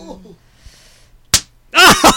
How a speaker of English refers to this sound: She likes to get smacked mid back.